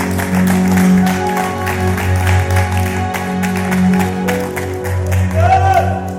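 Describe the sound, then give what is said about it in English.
A large crowd at a church worship service claps steadily and loudly for several seconds, a dense wash of hand claps with scattered cheers, over sustained background music. “Clap your hands one last time and give God some glory.”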